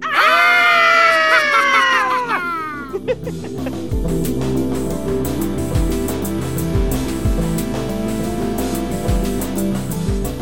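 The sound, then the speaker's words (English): Several voices let out loud, drawn-out mock-spooky Halloween screams together for about three seconds, their pitch sliding downward, before rhythmic music with a steady beat takes over. “to introduce Scream Time, I think we should all give our best Halloween scream”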